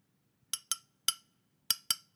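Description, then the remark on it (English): Five bright glass clinks ring out in two quick pairs and a single strike between, each a sharp high-pitched ping with a short shimmering decay over a faint low hum, no talking. “All right, I'll use this glass again.”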